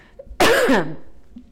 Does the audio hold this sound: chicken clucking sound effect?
no